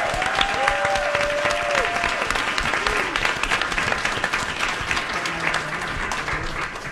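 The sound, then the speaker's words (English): A crowd applauds loudly and steadily for about seven seconds to thank two people, a dense wash of clapping with a few rising and falling cheers or whoops mixed in near the start. “I want the loudest applause for them because they're just amazing.”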